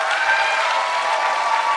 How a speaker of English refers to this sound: Big round of applause for Morgan.